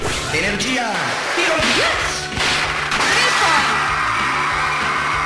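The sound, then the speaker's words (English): Loud, busy arcade video game sound effects from a fast game of slapping a huge frisbee back and forth on a small court, like a fighting game mixed with Pong: rapid swooshing pitch sweeps, whip-like cracks and smashing impacts layered over a dense, continuous electronic background for several seconds. “Because it's like a fighting game mixed with Pong with sound effects that go like this.”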